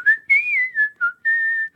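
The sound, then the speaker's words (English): A person whistles a short melodic tune, several clear notes gliding and stepping in pitch with brief breaks between phrases, with no talking underneath. “you're just whistling Dixie”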